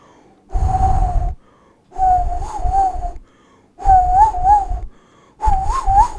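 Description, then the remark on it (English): Four breathy, airy blows with a thin, wavering pitch barely forming a tone, as a person who cannot whistle tries and fails to whistle, each burst about a second long with short pauses between. “I really wish I was able to do because it's so simple. Whistle. Like, I can't whistle.”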